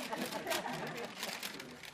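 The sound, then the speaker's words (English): Newspaper pages rustle and crinkle continuously as someone reads a newspaper, a dry papery noise with a few louder swishes as sheets are handled and turned. “Were you assimilating that, absorbing that, as you were the very interesting way of reading the newspaper?”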